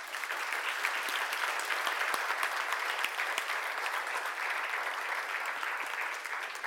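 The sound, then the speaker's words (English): An audience applauds the people who serve and contribute behind the scenes, a dense wash of many hands clapping at a constant level for several seconds with no one speaking. “And why don't we applaud them?”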